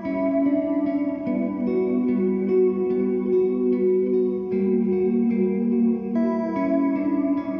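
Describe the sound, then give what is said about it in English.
Sustained electric guitar chords, the recorded signal passed through reverb pedals into an amp with the whole room miked, washed in heavy reverb and chorus-like shimmer. They blur together into a continuous, haunting drone with no voices. “To make it sound wider but still contained, I recorded the reverb separately, passing the recorded guitar signal through my reverb pedals into an amp, and then mic'd the entire room that I was in.”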